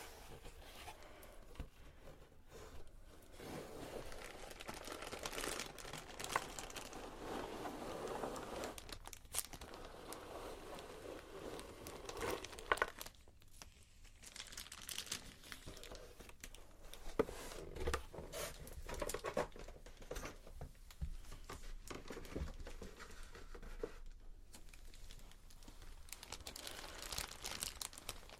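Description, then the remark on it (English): Continuous crinkling of a plastic bag holding small game pieces as it is opened, rustling and crackling in irregular bursts with brief pauses as the pieces shift inside. No one speaks. “So I keep the little pieces in a plastic bag.”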